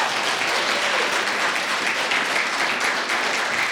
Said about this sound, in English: I want to give a big shout out to the crew. Nothing like this can happen without the crew of Counterspin. A big clap for them, guys.